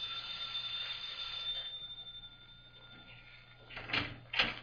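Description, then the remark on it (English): A doorbell at the Alphabet Club gives a single high, ringing chime that hangs and slowly fades over a couple of seconds, followed by two short, soft clunks near the end. “First, I rang the bell.”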